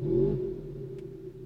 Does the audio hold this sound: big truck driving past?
yes